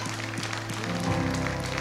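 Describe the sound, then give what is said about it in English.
A church audience claps steadily and continuously as people come forward to the altar, a dense, even patter of many hands with sustained low musical tones humming underneath, holding a constant moderate loudness throughout. “Don't quit clapping till they get.”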